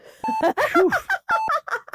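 Two short, clear electronic beeps from an EKG heart monitor, about a second apart, then beeping in a normal rhythm, prominent while a voice talks throughout.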